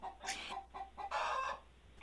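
A live chicken in a hotel room clucks in a quick run of several short, bright calls, ending in a longer, harsher squawk, with faint room noise underneath.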